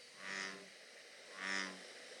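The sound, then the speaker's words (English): Two deep, resonant bullfrog croaks, each a low droning call lasting about half a second, separated by a pause and heard alone against quiet background hiss. “But from far away, it sounds kind of like a cow. It sounds like a bull-ish.”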